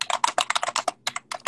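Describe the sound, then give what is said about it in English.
Rapid typing on a computer keyboard, a steady clatter of many quick keystrokes in bursts with a brief pause midway, no voices present. “Are you typing, motherfucker? Yeah, I'm just typing.”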